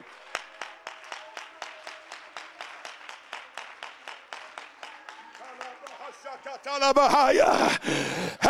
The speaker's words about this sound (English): Somebody clap your hands and give praise to a faithful God.